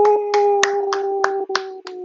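Roughly seven sharp, crisp hand claps in an even, steady rhythm, moderately loud, over a continuous low humming tone, with no one speaking.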